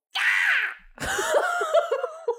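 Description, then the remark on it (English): A person imitates the shrill, high-pitched scream a performer gave her concert audience after a song. A sustained wavering shriek slides downward, then after a brief gap comes a second strained, quavering cry with breathy laughter-like breaks. “It was a scream exactly like that.”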